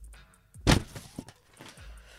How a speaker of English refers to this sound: Can you hear the paper? I'm going to pull it out of the envelope now.